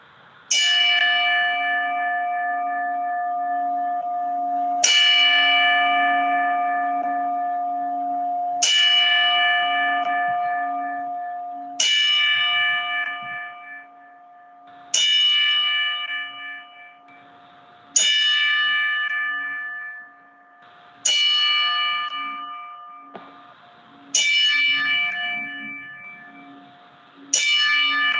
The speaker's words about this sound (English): I got a 10-bell salute queued up for Scott